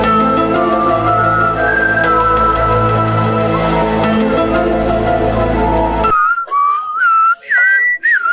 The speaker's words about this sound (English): Wow. Getting the whistling down good. Yeah, stereo right there.